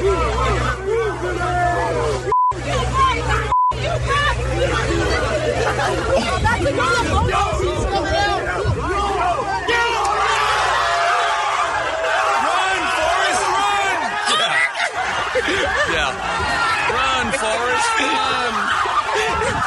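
A large crowd around a police car yells and jeers in a dense, continuous roar, then about halfway through, as a handcuffed kid breaks out of the back seat and runs, the noise lifts into brighter, higher-pitched cheering and excited shouting.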